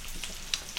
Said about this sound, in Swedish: steker fläsk.